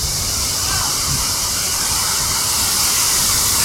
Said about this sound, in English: We're hanging out by the waterfall.